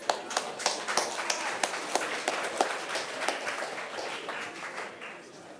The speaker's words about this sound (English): I'd like to invite YFlix up to get us started. Let's invite Lewis up with a round of applause, please.